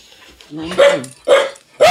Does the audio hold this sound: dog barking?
yes